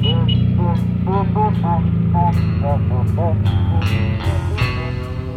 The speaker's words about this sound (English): One guy makes fun of the Minutemen by humming the theme to Mission Impossible into a bullhorn as they pass.